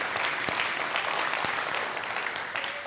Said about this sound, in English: Were you clapping again? You can clap again.